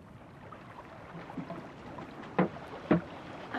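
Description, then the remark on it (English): A small rowboat moves across water, with a steady soft wash of lapping and two distinct oar strokes splashing near the end. No one speaks. “Let's get back to the boat.”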